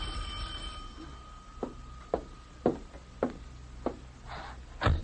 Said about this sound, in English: Then the doorbell rang.